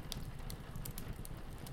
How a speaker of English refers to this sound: You light the first match, and the paper lights up with flames that curl around the kindling. Before long, the fire is crackling away and the smoke is disappearing up the chimney.